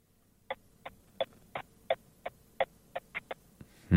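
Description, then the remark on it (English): A car turn-signal indicator ticking: about ten quiet, crisp clicks at a steady, even pace, cut off by a sudden loud burst of noise at the very end. “So what are you doing? Indicator. Okay, an indicator in the car.”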